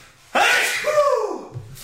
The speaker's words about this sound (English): All right, sorry, had to sneeze. No time to pause. I apologize if I blew out anybody's eardrums.